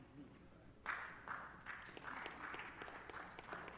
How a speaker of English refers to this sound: You need to clap better. I know you don't want to. Thank you, ma. Thank you. Make me feel good.